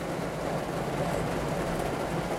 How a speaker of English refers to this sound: And now it's just raining harder and harder. And I'm sure you can hear it. Yeah, it's getting so much louder now.